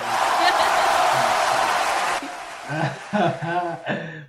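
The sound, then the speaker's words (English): A dense burst of clapping fills the first two seconds, then stops abruptly, giving way to a few people talking and chuckling. “applause for that.”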